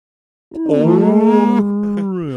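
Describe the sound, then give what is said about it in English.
A person imitates a whale call with one long, drawn-out, low moaning tone that bends slightly in pitch, voiced loudly and steadily for about two seconds without any words. “Like, oh no, I'll do you one better. I'll be a whale.”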